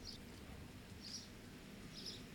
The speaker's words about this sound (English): and by the way, you hear Mr. Bird out there.